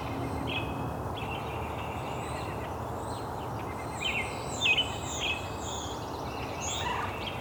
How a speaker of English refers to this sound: American robin, and a brown-headed cowbird, pine warbler, white-breast nuthatch, European starling.